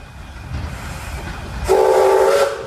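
A steam locomotive on a tourist railway in the Tasmanian town of Devonport rumbles low and steady, then lets out a loud, sustained whistle blast that carries through the last second, prominent, with no voices.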